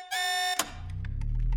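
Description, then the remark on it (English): A loud, harsh alarm blares in a steady buzzing tone for half a second, then cuts off with a sharp click, leaving a low rumbling hum that slowly swells. “Finally, the lights came back on, and the alarm fell silent.”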